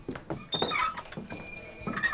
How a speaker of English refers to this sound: The door squealed as the young men entered the Oriental Saloon.